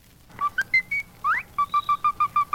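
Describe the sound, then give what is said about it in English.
Cleopatra, a cockatiel from Australia, whistles the first part of Caprice Viennois: a few clear, varied notes and a rising swoop, then a run of about eight short, evenly spaced whistled notes. No one speaks. “Cockatiels make fine talkers and excellent whistlers.”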